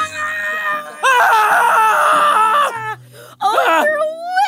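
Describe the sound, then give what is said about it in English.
A person lets out loud, raw, sustained primal screams, straining and wavering in pitch, broken by a brief gasp before another howling cry. “I start primally screaming.”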